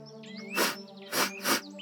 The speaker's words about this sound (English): That's odd. Beyond that hedgerow is one of the busiest arterial thoroughfares in southern England. It's summer. A beautiful morning, yet all I hear is birdsong.